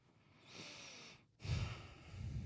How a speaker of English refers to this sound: Stop breathing in the mic.